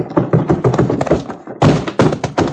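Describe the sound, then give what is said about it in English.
A man is heaved by the bouncer through the swinging doors of a saloon: a rapid scuffle of heavy thuds and knocks, then a sudden loud crash and more clattering bangs as the doors swing. “Billy Blue Blazes, Chad, someone was heaved right through the doors of that saloon by the bouncer.”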